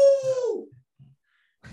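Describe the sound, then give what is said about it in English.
A woman imitates a wolf with a short, loud howl, holding one strong note before it slides downward and fades. A few soft low thumps follow, then a brief burst of noise. “She's just done it back. I'm sorry for anyone's dog who just went crazy, but...”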